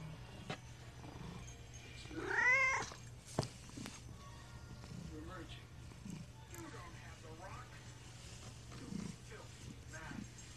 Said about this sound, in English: My roommate's cat's kind of making an appearance right now.